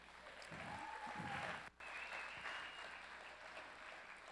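A crowd claps steadily in dense, sustained applause, filling the room at moderate loudness, with a brief dip near the middle before the clapping continues evenly to the end.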